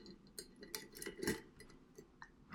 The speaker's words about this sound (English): Nathan is attempting to open a bottle of wine that's been sitting in my refrigerator for the past, I want to say, 4 months.